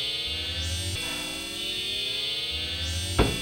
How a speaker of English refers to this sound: What was? It was the air raid sirens.